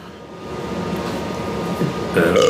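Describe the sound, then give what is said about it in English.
A short, throaty burp erupts near the end, fairly loud, following a couple of seconds of low, rumbling background noise. “While you're thinking about it, I have belch.”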